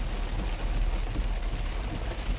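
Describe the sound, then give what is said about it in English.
Heavy rain pours down in a steady, dense hiss with a deep low rumble underneath, loud and unbroken throughout, with no voices, while driving southwest on I-75 where Georgetown Road Northwest (Tennessee 60) crosses, about 42 minutes from Chattanooga. “Man, the water is really coming down right now.”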